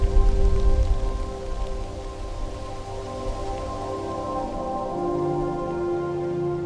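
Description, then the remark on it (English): Light morning rain patters steadily at sunrise during a turkey hunt, a soft continuous hiss of drops with no talking, while a faint sustained humming tone lingers underneath throughout. “We watch the sun come up, birds flying overhead, a deer in the distance, a light morning rain.”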